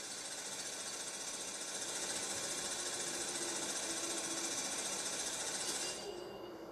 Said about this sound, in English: Sewing machine's going off again!